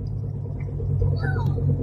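Steady, fairly loud low road rumble inside a moving car, with a child strapped into a car seat in the back, continuous throughout, with a faint brief higher whine rising briefly near the end.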